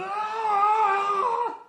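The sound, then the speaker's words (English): A single loud, drawn-out yell from one man, mimicking basketball player Pau Gasol's triumphant scream after a fast-break dunk. It's held steady for over a second, then its pitch dips as it trails off. “And he, what does he do after he dunks the ball? He does that stupid yelling.”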